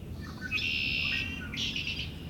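A red-winged blackbird sings two buzzy, trilling phrases in quick succession, clear, over a low steady outdoor rumble, in mid-March at Coots Paradise in Hamilton.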